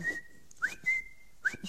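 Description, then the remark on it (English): A person whistles a calling signal: sharp upward-sliding notes followed by held, steady tones, repeated twice in quick succession, loud with no talking. “He'll whistle for them. The Bible says he whistles for them.”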